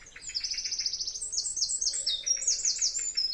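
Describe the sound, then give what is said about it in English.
A chaffinch sings a rapid, cheerful run of bright descending notes, repeated in quick succession amid other birdsong, clear with no talking. “And that chaffinch again.”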